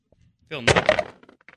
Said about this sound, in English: Six dice. Six dice here.